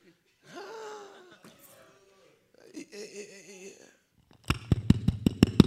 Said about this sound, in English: Clapping for myself because you won't clap.